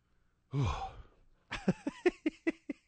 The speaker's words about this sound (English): He's breathing so hard.